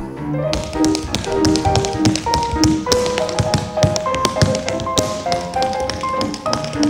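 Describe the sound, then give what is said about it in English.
Rapid, crisp tap dancing in a tap dancing studio clatters nonstop across a hard floor, sharp metallic taps in quick rhythmic bursts, loud, with upbeat music playing underneath. “Let's open the door, and yep, it's the tap dancing studio.”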